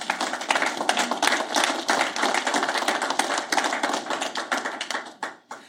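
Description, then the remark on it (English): An audience applauds with a dense, steady wash of overlapping handclaps that holds for several seconds before thinning out and fading at the end. No one speaks. “But I just want us to once more give a round of applause to a government who is following the trends.”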